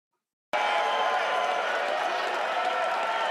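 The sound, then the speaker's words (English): A large concert crowd cheering, bursting in suddenly after a brief silence and holding as a loud, dense, steady roar of voices and clapping. “Okay, straight up, that's a way bigger crowd than Biden got.”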